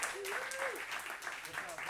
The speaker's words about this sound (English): I want you to give a round of applause to one of our good friends.